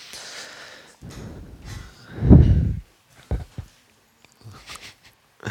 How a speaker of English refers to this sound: I have a problem with breathing too hard.